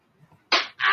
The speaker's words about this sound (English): That was a slap. Listen again.